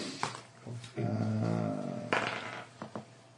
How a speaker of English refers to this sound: Who's dogs? Next door's dogs. They're evil and they hate me.